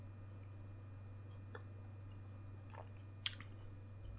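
Someone quietly sips a flat, hoppy oat beer, with a few soft wet mouth clicks and a brief slurp over a low steady hum; nobody speaks.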